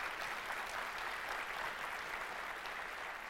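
A church audience applauds steadily to honor a man, a dense wash of many hands clapping at an even, sustained level for a few seconds, with no voices heard over it.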